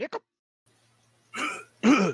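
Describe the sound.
A voice imitates hiccups: two quick, clipped catches of breath followed by two louder, voiced gulping hics, separated by brief pauses.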